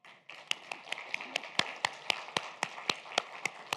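Modest audience applause: a steady, rhythmic run of sharp claps stands out over a soft wash of scattered clapping, fairly subdued overall and lasting only a few seconds, with no one speaking.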